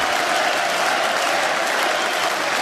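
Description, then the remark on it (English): Loud, sustained applause from an audience at an awards event, clapping for Ryan Lochte, a dense steady wash of many hands clapping with no pauses, holding at an even level throughout. “Clap for him.”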